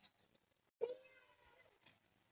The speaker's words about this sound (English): I've got a cat meowing at the fucking window. Trying to get in here with me.